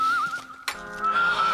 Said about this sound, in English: Is that the mating call? No, that's a whistle. A whistling chicken? No, a whistling man. A whistling farmer man!